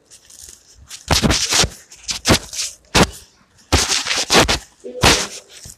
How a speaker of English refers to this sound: Why are they banging on the door like that?